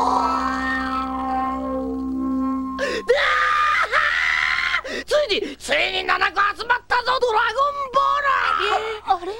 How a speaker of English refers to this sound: really fucking cracked me up was when he thinks he has all the Dragon Balls and he, like, just, like, screams with joy, and it's, like, one of the funniest screams I've ever heard. He is always breaking the sound barrier with his fucking screeches.